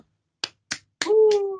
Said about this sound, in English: I got a round of applause. That was lovely. I enjoyed that.